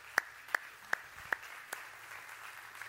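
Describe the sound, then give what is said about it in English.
A brief, sparse round of applause from an audience at Valley Point welcoming a guest speaker from Eastern University: about five slow, evenly spaced sharp claps, the last ones fainter, trailing off into quiet background with no talking. “Hey, the other 2 hours didn't even clap at that point, so maybe they've heard the good news.”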